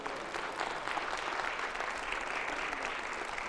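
A crowd at a sermon on Hebrews applauds Christ as the high priest with steady, dense hand clapping that holds at an even, fairly loud level for a few seconds, a continuous wash of overlapping claps with no voices standing out.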